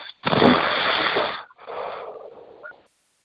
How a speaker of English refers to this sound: It sounds like breathing through the phone is in my perspective.